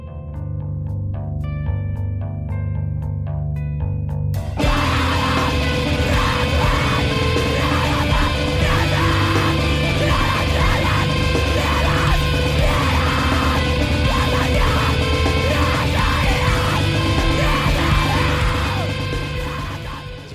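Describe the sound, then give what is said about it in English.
A screamo song opens with a few sparse, clean guitar notes, then crashes into loud, dense distorted guitars and drums under frantic, overlapping screamed vocals that keep going to the end. “Get the frantic double vocals here, so this will be, many were saying, is there more than one vocalist?”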